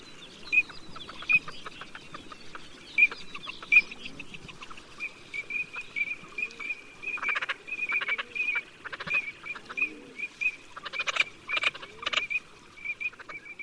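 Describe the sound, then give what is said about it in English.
A teal duck calling sequence, a game bird call used in hunting: a long run of short, high, whistling peeps and quacks in quick irregular bursts, steady, with no voices. “I'm going to play for you a calling sequence, and you need to identify what game bird it's from.”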